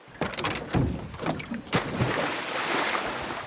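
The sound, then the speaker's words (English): A few hollow thumps against a boat hull, then a heavy splash as a person rolls backwards off the side of the boat into the ocean, followed by steady rushing and sloshing water noise. “just rolled into the water”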